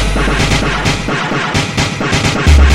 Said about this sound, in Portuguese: Dá uma rajada daquela nervosa.